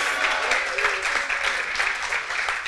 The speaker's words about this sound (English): That was an awesome golf clap. We're gonna try it again.